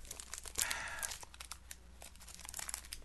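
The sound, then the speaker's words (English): Busy crinkling of a Kit Kat candy bar wrapper, with sharp rustling bursts and a louder crackle early on, continuing unevenly throughout without any speech. “Don't put your mouth on the wrapping.”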